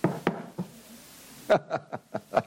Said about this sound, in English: The door has shut. Was that not definitive?